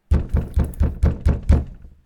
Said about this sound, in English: And you're preparing to start And you hear a knock on the door.